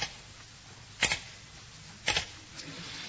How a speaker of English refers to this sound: Now, where was I? Oh, yes. I really must do a bit of typing.